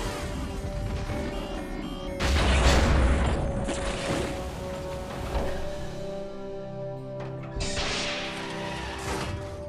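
A spaceship crash-landing on the desert planet Tatooine after its stabilizers, hyperdrive and primary engines fail: a loud, deep booming impact with rumbling and crunching debris, followed by a sustained mechanical whine and a second burst of roaring noise, with no voices.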